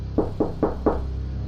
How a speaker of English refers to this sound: I assume that Charlie's room is the only one that's shut currently? Probably. All right. So I will knock.